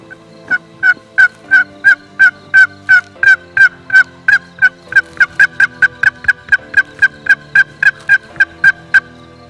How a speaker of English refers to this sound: the gobblers crossed the logging deck lane and begin moving off, they decide to try to cut them off.